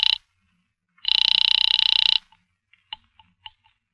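A telephone bell rings in Miss Blake's apartment in a rapid rattling burst, a short clip and then a longer ring of about a second, followed by a few faint clicks. No voices are present.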